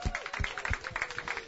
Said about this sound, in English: Clap it up for the winner.